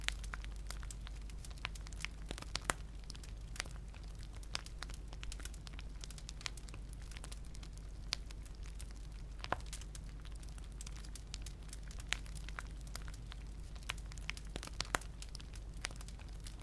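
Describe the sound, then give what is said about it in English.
Footsteps crunch through evenly placed snow in a loose, uneven rhythm, each step a brief crackly crunch over a faint, steady low hum, with no voices. “As each foot crunches down into the evenly placed snow, you are mindful of your steps forward in the moments before going to sleep.”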